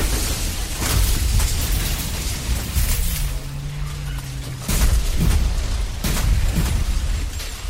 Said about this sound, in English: But now, the van comes to a crashing halt.